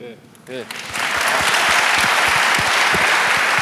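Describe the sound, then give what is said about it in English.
A crowd breaks into loud, sustained applause, dense rapid clapping that swells after a brief voice at the start and holds steady to the end. “Man, you guys should feel encouraged right now, the applause.”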